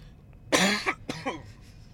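Two harsh coughs in quick succession, the first longer and forceful, the second shorter and a bit raspier, with no talking around them.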